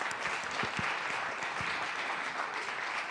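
A crowd claps steadily for about three seconds for an attendee over 75 years old, a dense, even wash of applause at a moderate level with no voices standing out above it.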